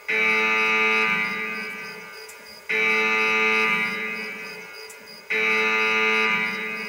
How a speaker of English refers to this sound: I got to use the Torok alarm for the Red Pill Road Call.